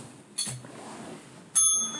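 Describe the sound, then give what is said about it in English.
A bicycle bell rings twice: a short, bright ding, then a second, louder ring that lingers and shimmers to the end, with only faint background hush. “Ding the bell.”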